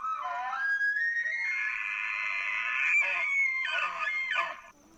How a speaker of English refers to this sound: There are apps you can download that pretty closely mimic the sound of real elk. Ready? Mm-hmm. Okay, so this is a challenge bugle.